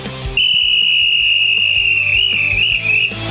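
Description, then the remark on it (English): A whistle blown by a Dallas Cowboys fan in one long, shrill, sustained blast lasting nearly three seconds, loud, its steady pitch wavering slightly near the end. “The whistle you're about to hear is from a Dallas Cowboys fan excited to talk about his team. Blow the whistle.”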